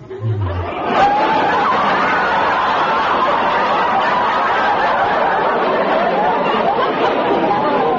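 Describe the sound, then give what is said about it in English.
A frog named Mac gives its version of a wolf whistle at a hen turkey: a loud, raspy, chattering trill that starts with a brief upward sweep and then runs steadily for about seven seconds. “You have just heard the frog's version of a wolf whistle.”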